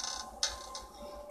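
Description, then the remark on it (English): A latched door opens by itself without its handle being turned: the latch releases with one sharp metallic click, followed moments later by a softer second click, over a faint steady mechanical hum. No one speaks. “door just opened again.”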